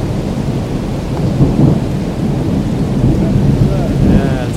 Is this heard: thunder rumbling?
yes